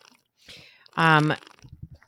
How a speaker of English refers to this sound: I'm trying. Drink water. Let me drink a little water here.